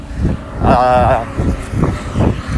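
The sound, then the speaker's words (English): A semi truck horn blares once in a single sustained, brassy honk lasting just over half a second, set against steady low rumbling wind and road noise. “just got a honk from a semi truck.”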